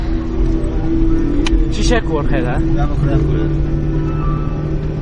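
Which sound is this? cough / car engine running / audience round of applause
car engine running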